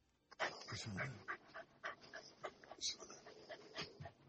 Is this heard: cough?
no